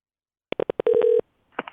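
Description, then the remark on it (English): A quick series of short electronic phone beeps, then a steadier tone with pulsing underneath, followed by a few fainter blips as a phone call to a bureau chief in Spokane, Washington connects. No voices. “To answer part of that question, I got on the phone with our Spokane, Washington bureau chief.”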